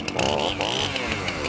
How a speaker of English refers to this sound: My chainsaw's ready to rip up some regulations.